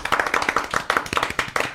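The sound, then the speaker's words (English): A burst of hand clapping from a few people welcoming a guest, quick overlapping claps in a loose, uneven rhythm, fairly loud and sharp, with no talking over it. “We had a talk today about this. About what? About how we clap guests.”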